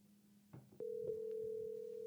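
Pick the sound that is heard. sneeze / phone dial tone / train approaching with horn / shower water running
phone dial tone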